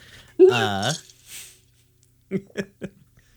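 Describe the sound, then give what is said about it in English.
A strained, voiced gasp breaks out, followed by a rasping breath and then three short, sharp coughs as someone chokes on a sip of drink that went down the wrong way. “I thought it was safe to take a sip of drink, but I was wrong.”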